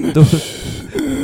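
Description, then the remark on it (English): A man breathes heavily and grunts in short, low, voiced bursts, with raspy breaths between them and a longer strained groan at the end, fairly loud. “Okay, this dude's getting real savage right now. Yeah, yeah. The breathing.”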